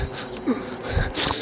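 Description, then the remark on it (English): Ragged, rasping breathing of a creature with a metal collar and chains running down its shoulders, under damp crumpled material: a few uneven wheezy breaths with noisy hiss and a low snorting edge, moderately loud and alone with no voices. “And as you slowly lift this sort of crumpled material, the breathing becomes more ragged, and you see the beginnings of what seems to be a face.”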